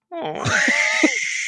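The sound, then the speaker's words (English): A voice imitates an eagle's cry: one loud, strained screech that climbs in pitch from a low growl and holds a piercing, shrill tone for over a second, with a couple of gravelly catches. “Then, you know, a random eagle flies by and is like, hey.”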